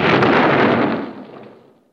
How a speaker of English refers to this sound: Bone raises the gun in Cutter's dead hand to aim it at Cord, who puts his glasses on to face death. We cut to black at the sound of the gunshot.